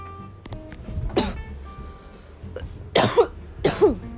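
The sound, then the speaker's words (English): Three harsh, forceful coughs burst out, one early and then two in quick succession near the end, with a faint background hum between them. “Cough up a lung.”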